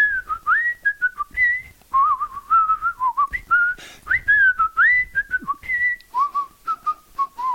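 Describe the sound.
A person whistles a lively tune, the opening of a song, the notes rising and falling in quick phrases with short breaths between them, clear and solo with no other sounds.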